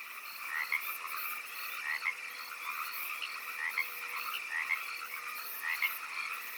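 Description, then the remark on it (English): A dense chorus of about 10,000 frogs croaking and trilling at once all night outside a window, a steady overlapping wall of calls with brighter chirps popping out every second or so, no voices. “We knew that if the 10,000 frogs singing and croaking all night outside their window did not keep them awake”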